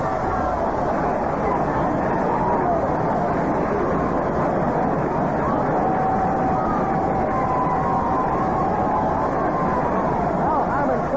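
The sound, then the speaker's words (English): A big stadium crowd at a Minnesota baseball game roars and cheers a leadoff home run by Herman Killebrew to deep center field in the bottom of the fifth inning, a loud, unbroken wall of noise for about eleven seconds, with a few higher whistles or shouts rising above the steady din. “And this ball is out of here and a home run for Herman Killebrew, and some crowd it is.”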